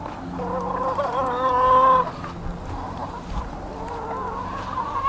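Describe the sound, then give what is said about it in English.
Several chickens cluck and squawk, one call rising loud and drawn-out in the first two seconds before softer, steady clucking carries on. No one speaks. “Hope I'm not coming out to find a dead chicken.”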